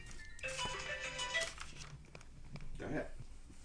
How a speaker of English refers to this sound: Hold on. We have a phone call already.